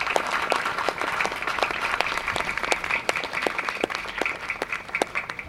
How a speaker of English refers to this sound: So I think they deserve a round of applause from all of us for the huge commitment.